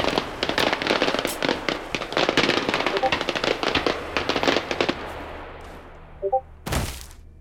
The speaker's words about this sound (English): What did you do? Fireworks. And it worked.